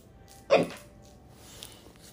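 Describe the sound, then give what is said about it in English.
A single abrupt hiccup, fairly loud, bursts out once near the start and is followed by quiet room tone with no talking. “We're going to try to ride these fucking hiccups up.”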